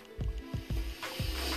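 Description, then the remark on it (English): Beer poured from a bottle into a glass, a few low glugging gulps over a steady foamy fizz and hiss, with no one speaking. “Here, I'll pour mine.”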